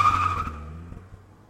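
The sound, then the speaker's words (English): A car tears away with a short, shrill tire screech over a low engine rumble, the noise fading steadily as it drives off. No one speaks. “When she said no, Melvin yelled at her and sped off.”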